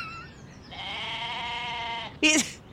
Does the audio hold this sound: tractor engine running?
no